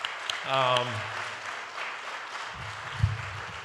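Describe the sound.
Steady crowd applause in a church audience, thanking a man who does much work around the church facility, a dense crackling clatter that holds at an even level throughout, with a brief vocal call rising over it early and a low voice murmuring near the end.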